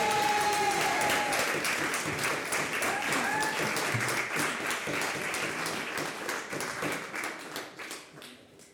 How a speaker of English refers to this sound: Come on, round of applause.